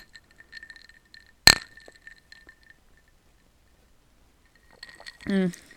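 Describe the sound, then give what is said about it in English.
A sharp, bright clink of glasses touching in a toast, the ringing tone lingering for a moment among a few soft glassy taps, followed by a brief voiced murmur near the end. “I garnished it with trying to make a heart-shaped strawberry, but let me know what you guys think. Cheers.”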